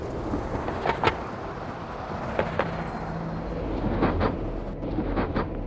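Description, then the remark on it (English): A steady, muffled rumble of traffic passing on a bridge overhead, heard from a fishing boat below, with a few sharp knocks and thumps scattered through it. No one speaks. “Bait's in the water, and you can hear the traffic on the bridge above us.”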